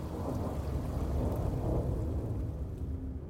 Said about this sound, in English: A little after 4 p.m., they're in the Bavarian Alps, winding up to the Berghof. The skies darken. It starts to rain.